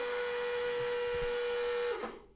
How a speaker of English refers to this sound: That's the pit entry warning buzzer that for some reason has just cracked into life. Wow. Just looking around. It's a red flag, isn't it? It's a red flag at the RMA track day for anyone that's listening.